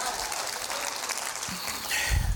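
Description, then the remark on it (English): An audience claps their hands in a dense, steady wash of applause that holds at an even loudness throughout, with a brief low thump near the end. “Come on, somebody, clap your hands and say, I got it, I got it, I got it, I got it.”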